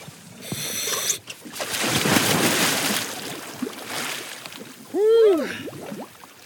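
A diver plunges into icy cold water with a big splash that churns and sloshes for a couple of seconds, then a short voiced exclamation rings out near the end. The diver is going in to swim over to a severed cable end and take a sample.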